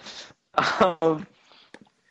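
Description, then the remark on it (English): A short breathy intake followed by a loud, voiced sneeze that bursts out in two quick parts, then trails off into faint rustling and a small click. “Yeah, I bless you.”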